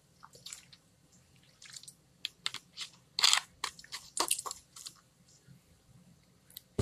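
Someone takes a sip of water: a series of wet mouth clicks, small slurps and swallowing noises in an irregular run, with no talking.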